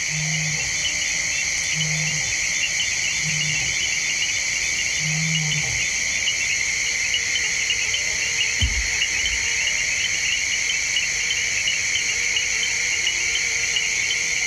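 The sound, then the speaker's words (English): A dense nighttime jungle chorus of insects and frogs at the river's edge along the forested River Mara in the Maasai Mara wildlife preserve, southern Kenya: steady, shrill insect trilling layered in high bands, with a few short low hoots repeating early on and one deep thud midway. “The nighttime world along the forested River Mara is wide awake with giant flying insects, chirping bats, chiming frogs, and the occasional hungry hippo.”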